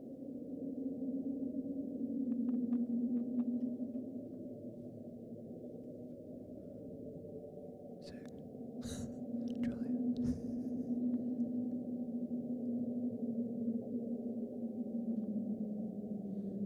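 Underwater ocean sound recorded in 1999 by NOAA (National Oceanic and Atmospheric Administration) hydrophones: a steady, low droning rumble with a humming tone running throughout. A few faint ticks come early, then a cluster of sharper crackles and pops midway. No talking.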